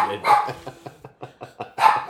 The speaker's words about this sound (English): I'm sorry, the dog did not show us his ID and now he's angry with us. Because we won't give him any beer. Is this a neighbor dog? Yes, it's a neighbor dog. What's he barking for? What are you barking for?